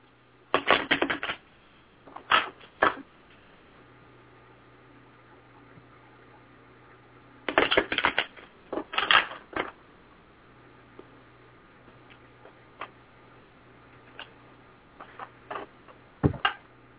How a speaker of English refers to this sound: So just give me one moment. I'll shuffle the deck for you.